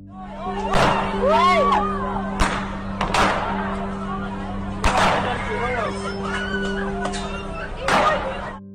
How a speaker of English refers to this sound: Protests, screams and bullets.